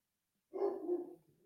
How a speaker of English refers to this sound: Oh, my dog is barking. Hold on. I don't know if that picks up on the microphone. He's downstairs. Attack! Kill! For my listening audience, I have an Akita, which is a very big, powerful dog